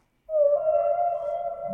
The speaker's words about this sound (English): That's a nice sound, though. But it just... Is that the blue whale? That's the humpback. Humpback, baby.